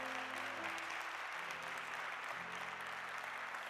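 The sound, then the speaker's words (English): A church audience claps steadily and loudly for several seconds as praise to God, a dense wash of applause with a sustained low organ-like tone underneath. “Come on, let's now give God one more hand clap of praise.”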